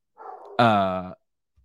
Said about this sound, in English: My dog is barking like a mother.